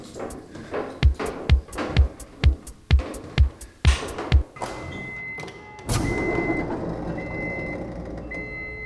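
A steady series of about eight sharp clanks at an even pace, then a sudden loud rush as a large door opens, settling into a sustained rumbling hiss with a faint high whine. No one speaks.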